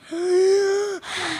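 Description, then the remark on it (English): One loud, exaggerated breath: a long, voiced, gasping inhale lasting about a second, then a shorter, airy, hissing exhale. No other sounds. “One of the next steps for this, they said, is for it to be able to detect something as subtle as breathing.”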